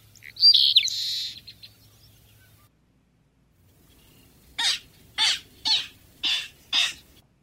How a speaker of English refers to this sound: And this is the clapperrail. You know, it's crazy the way we sometimes try to put human characteristics or whatever, but when I heard the clapperrail there, for whatever reason, the word sassy came to my mind.